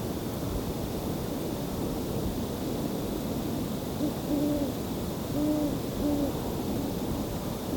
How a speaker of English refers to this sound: I'm hearing owls. I'm hearing owls, but they're very faint, a bit distant. So I'm gonna try my best.